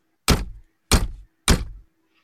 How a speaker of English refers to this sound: Okay. I'll knock. Oh, you. No, it's number 42. Oh, God. Right, I'll knock.